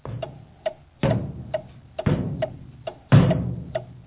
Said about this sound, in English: The grandfather clock.